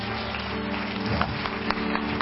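An audience claps their hands in praise of the Lord, a dense, steady wash of applause with a few sharper claps standing out, over a low sustained hum; no one speaks.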